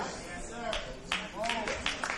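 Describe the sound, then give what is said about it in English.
Scattered clapping from an audience, a few sharp hand claps breaking out over a murmur of voices, fairly soft and irregular rather than a full sustained round of applause. “Oh, you don't have to clap.”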